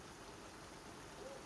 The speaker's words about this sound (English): I have to admit, there's something so peaceful about being inside while it's raining.